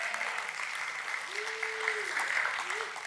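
An audience applauds the youth group steadily for about three seconds, a dense, even wash of clapping that holds at the same level throughout, with a brief sustained vocal tone rising above it midway.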